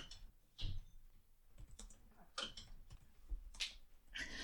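Rapid typing on a computer keyboard, a quick irregular stream of soft key clicks with a few louder taps, with no one talking.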